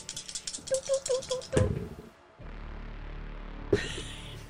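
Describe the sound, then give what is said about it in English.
Three dice rattle quickly in a closed hand for about a second and a half during a tabletop game roll, then clatter sharply onto a hard surface, followed by a quieter tumble and one last faint click. “Not using those dice again. Let's try the ones that gave me the success before.”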